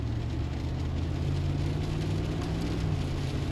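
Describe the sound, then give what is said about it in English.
Steady, droning road noise from inside a moving vehicle driving behind a meat truck, with a deep low engine rumble and constant tire hiss continuing unbroken throughout, fairly loud, with no talking. “Passing lane for this friggin' meat truck.”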